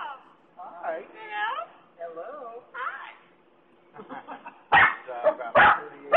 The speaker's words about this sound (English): So the dog's barking in the background, which is not the parrot, by the way.